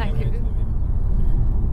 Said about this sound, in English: So we're in the car. We've just got out of the car park. It's been rammed and we're heading onto the A9 now north to try and get some sleep.